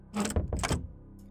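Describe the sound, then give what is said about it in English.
A door is pushed shut by a woman, with a brief scraping swing followed by a solid closing clunk, and then quiet. No one speaks. “And she closes the door behind you as you leave.”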